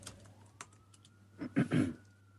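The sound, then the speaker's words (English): A faint siren wails steadily in the background, its tone slowly rising, while a few louder clicks and thumps of keyboard typing sound. “You know, there's a freaking siren going on in the background, so just...”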